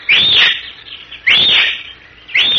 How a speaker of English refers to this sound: Several minutes later, the same horseman, having traveled a secret trail beneath a rocky shelf of the mountain, dismounts in a tiny glade surrounded by boulders, stunted trees, and giant cactus. He whistles three times, shrilly.